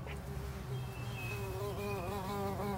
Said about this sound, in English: Do you hear that buzzing sound? What is it? Watch out! It's a bee!